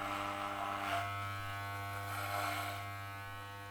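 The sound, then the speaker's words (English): Electric hair clippers buzz steadily as hair is cut into a buzz cut, a continuous motorized hum with slight swells in pitch as they move, no voices present. “Now I have a non-ideological buzz cut and a slightly changed perception of myself, feeling lighter and somewhat rebellious in a good way.”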